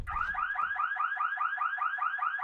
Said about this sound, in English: As Chupi's thinking out loud, an alarm starts ringing.